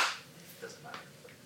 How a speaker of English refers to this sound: If you just want to clap one more time, that way. Okay.